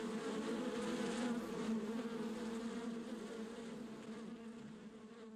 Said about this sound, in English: We stopped next to these fir trees and my daughter said, "What's that noise? What's going on?" We're looking around for this strange buzzing sound, for this noise. And eventually we looked up and the trees were covered, literally covered, in bees.